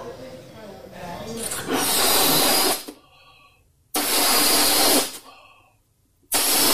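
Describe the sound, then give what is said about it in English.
Balloons being blown up: three loud, breathy gusts of air about a second long each, separated by short pauses with faint squeaky, rubbery tones in between. “Let's blow up the balloons.”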